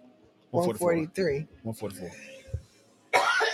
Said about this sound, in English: I'm sorry. I get hot and I start coughing.